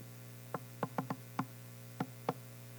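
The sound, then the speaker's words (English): Seven sharp knocks on a door in a familiar patterned rhythm, a quick run of five followed by two spaced raps, over a steady low electrical hum with no voices. “Here's another knock.”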